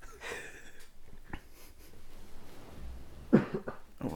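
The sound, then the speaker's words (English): Several short, harsh coughs break out in bursts, a couple early and a louder cluster near the end, over a faint breathy background with no talking. “Can stop coughing and pick a game.”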